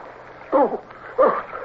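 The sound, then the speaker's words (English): Two short, rough bursts of splashing water about half a second apart, fairly loud, as two men struggle side by side in the water, with strained breathy sounds mixed in over a low steady background. “How long we struggled side by side in the water until he spoke to me again, I don't know.”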